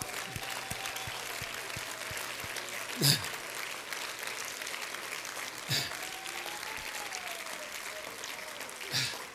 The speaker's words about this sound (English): Come on, let's clap our hands and thank God.